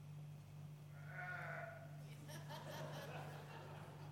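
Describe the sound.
A person does a wavering, bleating sheep imitation without a microphone, a quavering "baa" followed by a second shakier bleat, over a steady low electrical hum.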